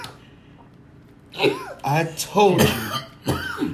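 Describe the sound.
After a second of near silence, someone coughs and clears their throat in a string of four rough, voiced bursts, fairly loud and unevenly spaced.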